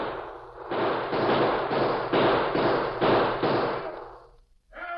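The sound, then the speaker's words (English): A long, loud burst of gunfire inside a bank, shots cracking in quick, fairly even succession for about four seconds with a heavy echoing wash before abruptly stopping. “Next minute, a lot of gunfire broke loose inside.”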